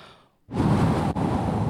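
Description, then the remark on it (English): A group of children blow hard together to imitate the big wind God sends in the story of Noah's ark, a loud, steady breathy whoosh lasting over a second, with a brief dip in the middle before it resumes. “Well, 5 months later, after floating on all this water, God sends a big wind. You kids want to help me with that?”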